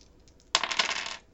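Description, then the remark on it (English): A sudden burst of many dice, rolled for poison damage in a tabletop game, clattering and rolling across a hard table, fairly loud, rattling for under a second before settling. No one speaks. “Oh, all those dice.”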